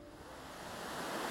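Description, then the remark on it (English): A steady wash of running water from a tiny moorland stream trickling and burbling, continuous and moderately loud with no voices; the stream becomes the River Severn, a few kilometres below its source bog on the Plinlimmon Range in Mid Wales. “It may not look much, but this tiny moorland stream becomes the River Severn.”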